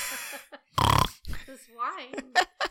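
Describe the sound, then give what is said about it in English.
A single loud, rough, blustery burst like someone blowing their nose, lasting about a third of a second, followed by vocal sounds and brief murmurs. “After you blow your nose.”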